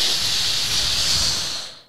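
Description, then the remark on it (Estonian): A steady, breathy hiss, made by a voice imitating another man's long urine stream, holds evenly for about two seconds before fading out at the end. “Ja siis lõpuks, kui ta on oma 5-minutilise jagala joa suutnud tühjaks lasta.”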